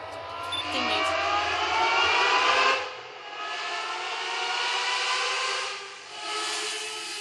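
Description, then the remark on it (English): A high-pitched Matra V12 race car engine of 450 horsepower, revving to around 11,000 rpm, screams at high revs, briefly easing off twice before wailing back up, loud with no voices. “What's the Matra V12 best sounding car ever made? Better than Ferrari?”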